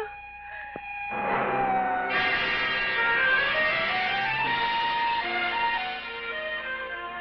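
An ambulance siren wails with sweeping, wavering tones, swelling from quieter to loud as it approaches, then holding steady. No one speaks.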